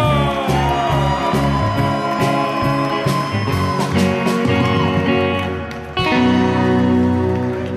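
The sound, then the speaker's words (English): A loud audience at a show at the Polish Combatants Hall cheers and whoops without pause, a dense wash of voices mixed with ringing sustained tones. It dips briefly near the end, then surges back at full volume. “Hot crowd.”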